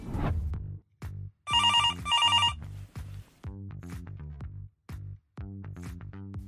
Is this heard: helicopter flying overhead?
no